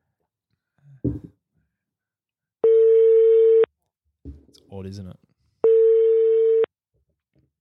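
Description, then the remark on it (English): An outgoing phone call's ringing tone sounds twice, each a steady, loud one-second beep with a pause between, while a voice briefly speaks in the gap. “He wasn't ringing like that.”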